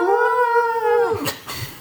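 Two dogs howl outside: one long, steady, wavering note that slides downward and breaks off, followed by a few short rough yelps. No one speaks.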